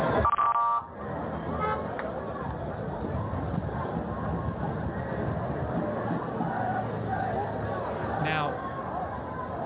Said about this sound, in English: This is some audio from people that are protesting in Israel.